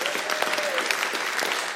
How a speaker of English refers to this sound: So why don't we give them a Burlington welcome? That's a clap.